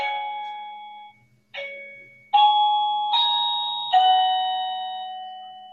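A doorbell chime plays a short melody of five bright, bell-like tones, each struck clearly and left ringing before the next, with no talking over it.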